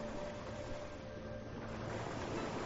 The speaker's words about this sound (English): Continue to breathe in the wonderful sea air and allow the waves to wash away everything that no longer serves you. Just enjoy this for a few moments.